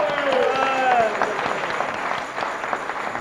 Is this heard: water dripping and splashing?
no